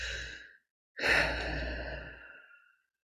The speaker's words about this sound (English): Let's do our deep breathing.